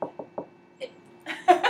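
Three quick, evenly spaced knocks on a wooden table with a dull, clicky tone, followed by a sharper tap and a short burst of brighter rustling noise.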